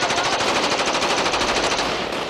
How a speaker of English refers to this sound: 30 seconds later, the entire night just erupts into automatic gunfire.